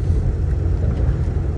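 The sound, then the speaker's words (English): Steady, loud low-frequency road rumble from inside a moving car at highway speed as it crosses four lanes of traffic to reach an exit, a constant droning hum with no voices present. “I literally just crossed over four lanes of traffic to get to my exit, and I got to it just in time.”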